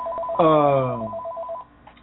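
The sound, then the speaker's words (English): A telephone rings once, a bright electronic tone that slides downward and fades, with a faint repeating beep pattern running beneath it at moderate volume. “That's why the phone's ringing for non-number.”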